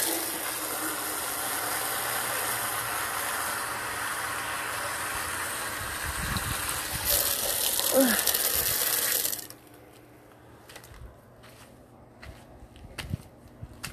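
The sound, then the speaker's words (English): A steady rush of running water, poured outdoors in the hot sun for a dog to drink, flows for about nine seconds, then cuts off abruptly, leaving quieter outdoor ambience with a few faint knocks. “You need water, dog? Yeah, there's some right there.”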